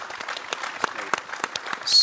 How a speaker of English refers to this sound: Come on, man. Let's clap for that. Let's really clap for that.